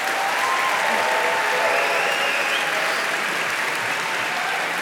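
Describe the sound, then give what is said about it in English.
Sustained applause from a sizable audience for the participants, a dense, even wash of clapping that holds steady and fairly loud for several seconds without any talking over it. “Okay, round of applause for all of our participants.”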